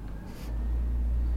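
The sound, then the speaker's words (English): A garbage truck rumbles in the background with a deep, steady engine drone, and a short hiss of air or hydraulics breaks through near the start. “Do you hear the trash truck in the back?”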